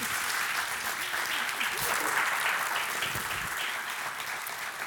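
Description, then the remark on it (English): Sustained audience applause for a guest who shared her story, a dense wash of many hands clapping at a steady, fairly loud level for about five seconds, with faint voices mixed in. “Well, will you guys give a round of applause again?”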